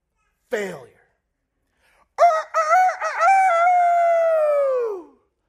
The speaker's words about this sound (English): Of which the crowing rooster is the ultimate blaring biblical example.